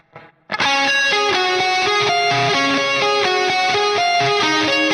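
A bright electric guitar lead with delay plays a quick, repeating run of notes, each ringing into the next under a big wash of reverb. Loud and steady after a brief faint start, with no voices.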